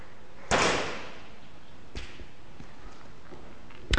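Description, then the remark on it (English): A door being closed bangs shut with a loud, sharp slam that rings briefly, followed by a softer knock and then another sharp bang near the end, with no one talking. “Because the door will go bang when it closes, but then it might be a bit quieter afterwards.”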